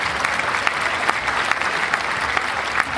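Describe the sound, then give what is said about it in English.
A crowd applauds steadily for the book Lucy's Mask, many hands clapping in a dense, even wash of sound that holds at a constant loudness for a few seconds, with no voices. “That rating also earns Lucy's Mask a round of applause.”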